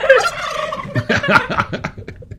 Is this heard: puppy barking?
no